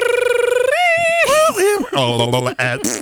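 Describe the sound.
A single voice mimics the dial-up modem connection screech heard on the house telephone while online: a wavering buzzy tone, then gliding squeals and warbles, and harsh noisy bursts across about three seconds.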